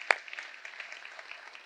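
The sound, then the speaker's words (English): An audience claps for a picture of a speaker's newborn daughter in a steady, moderately quiet patter of many overlapping hand claps, with one sharper clap at the start, and no one speaking. “Yeah, you, yes, I'll clap for that too.”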